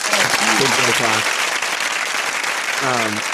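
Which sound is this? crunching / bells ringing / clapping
clapping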